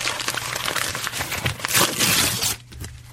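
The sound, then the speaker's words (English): Busy crinkling and rustling of paper as a present is unwrapped, with dense crackles and a few louder tearing bursts before it stops abruptly near the end. “And I also, I actually brought a present for you in this.”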